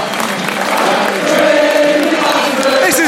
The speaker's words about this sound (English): And you can hear, it's the end of the match. The players are getting cheered off. The crowd are cheering. Birmingham City came down. They tried to conquer. Absolutely no chance. You can hear the crowd singing.